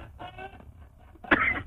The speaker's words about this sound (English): But you haven't got the worst cough in history, this man has.